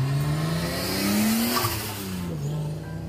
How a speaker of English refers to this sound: But yeah, so yeah, if you hear really loud noises, I will stop speaking for a second until they go by, because people like to rudely rev their engines.